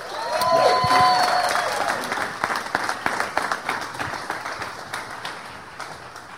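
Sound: audience cheering and applauding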